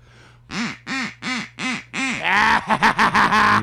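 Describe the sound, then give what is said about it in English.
A duck quacks loudly, five evenly spaced quacks followed by a fast, chattering burst of rapid quacks, with no one talking. “The duck. You're just going to sit there and flap.”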